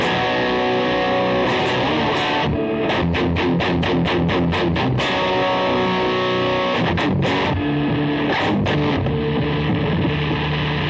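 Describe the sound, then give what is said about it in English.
A heavily distorted electric guitar with octave and overdrive effects switched on plays loud, dense chords with a thick, fuzzy low octave layer and sharp rhythmic strums and bursts, with no voices. “Oh, because I got the octave, overdrive on.”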